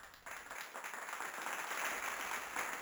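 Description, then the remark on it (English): A steady wash of crowd applause played from a soundboard as a sound effect, many hands clapping in a dense, continuous patter at moderate volume with no voices, holding evenly for a few seconds. “Please clap.”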